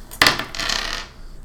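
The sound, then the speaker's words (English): Dice clatter across a hard tabletop during a tabletop role-playing game, a sharp initial strike followed by a brief rattling roll that settles within about a second, fairly loud with no voices. “Damn it, my dice are just. You know what? I think this one's just worn out.”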